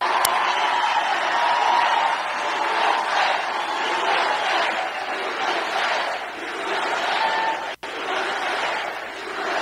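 A large crowd at CPAC chants "USA" as Donald Trump walks on stage after being introduced, in a steady, repeated rhythm, loud and continuous throughout, with cheering mixed in and a brief sharp break near the end.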